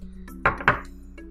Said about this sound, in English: Either way, let's go ahead and cheers. Cheers.